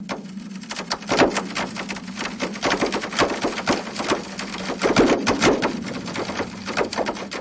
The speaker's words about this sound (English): This is taken from Earth Tunes, which is a project that records the audio of the earth crunching together as another way to monitor seismic activity. Have a listen to this.